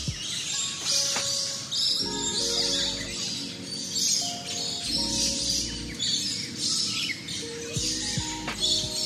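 A dense flock of lorikeets at the Loriloft at Jurong Bird Park, 2 Jurong Hill, chirps and screeches continuously in bright, overlapping bursts, while the low engine rumble of lorries on the nearby highway hums steadily beneath them.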